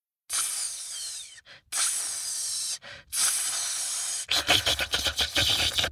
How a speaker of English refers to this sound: But just then, along slithered Cobra.